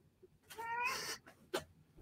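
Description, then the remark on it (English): A cat lets out one drawn-out meow, fairly loud, followed moments later by a short, sharp burst of noise; nobody speaks. “Well, we have the cats here to give us there you go.”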